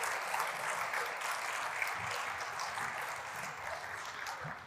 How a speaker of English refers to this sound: Let's give everyone a round of applause. Well done. Thank you so much.